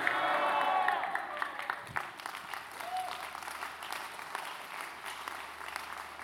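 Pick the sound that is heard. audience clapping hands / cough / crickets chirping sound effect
audience clapping hands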